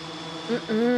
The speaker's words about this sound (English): It's drones.